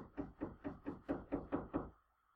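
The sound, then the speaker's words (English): Hammering by the neighbors: eight quick, evenly spaced blows in a steady rhythm, each a solid dull thud of moderate loudness, with no voices, then a short silence after the last strike. “Oh, now the neighbors are hammering something.”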